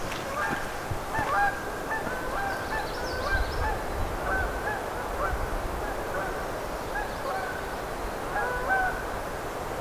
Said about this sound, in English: Here comes some Canada geese.